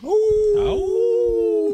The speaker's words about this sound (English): Wolf howl.